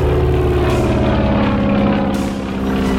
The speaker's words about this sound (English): As the late pilot rushes up to the hangar, he's just in time to see Boeing turn the plane into the wind, gun the engine, and lift off.